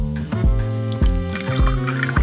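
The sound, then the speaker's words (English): Bourbon glugs out of a bottle into a glass, with a steady rhythm of gurgling bursts as the pour fills it, and no voices. “It's that brown water, man. It's the juice. The elixir of life.”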